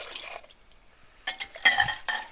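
Liquid being poured into a cup, with a few short gurgling, splashy bursts that rise and fall, fairly close and moderately loud, no voices.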